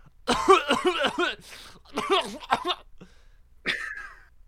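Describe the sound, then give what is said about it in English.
A person gives a short series of exaggerated, voiced coughs, several rough bursts in quick succession, then a brief pause before one final throaty cough. “Why are you coughing?”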